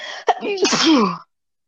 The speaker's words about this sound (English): Wow. First yawning, now sneezing.